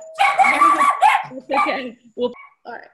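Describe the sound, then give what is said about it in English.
A dog at home, while its owner works from home, barks in a quick series of loud, high-pitched yappy bursts: two long drawn-out ones first, then several shorter, sharper barks trailing off. “That's one of the joys of working from home, right? Is we get to work with our animals nearby”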